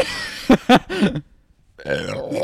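A few short, loud bursts near the start give way to a longer, croaking burp after a brief silence, with no talking.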